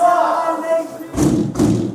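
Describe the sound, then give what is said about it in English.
A low ringing hum gives way to heavy metal prison cell doors banging shut at bang-up, when prisoners are locked behind their doors, three loud thuds in quick succession that echo. “It's a bang-up sound. It's called, we're behind our door and we can't get out.”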